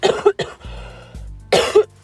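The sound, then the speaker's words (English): Several harsh coughs from a person suffering from allergies, in quick succession, a pair at the start and another pair near the end, with a low rumbling hum filling the gap between them. “I'm gonna cough because I'm suffering from the allergies.”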